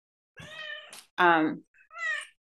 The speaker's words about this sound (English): Sorry, I have this noisy cat.